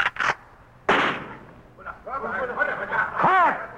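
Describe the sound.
Three sharp, loud rifle shots are fired into the jungle, two in quick succession and then a third after a short pause that lingers with a fading tail, followed by a voice speaking.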